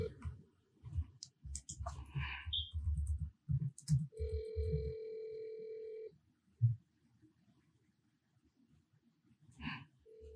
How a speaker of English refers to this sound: Pick up the fucking phone.